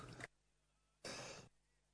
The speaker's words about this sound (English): Well, I was only throwing to it so I could cough. I've coughed now.